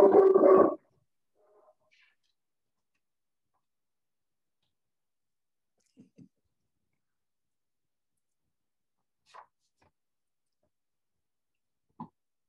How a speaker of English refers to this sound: Sorry about that. Zoom is a funny time when you've got dogs.